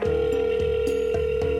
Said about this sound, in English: Just an endless dial tone. It was mostly dial tone. Numbers to nowhere.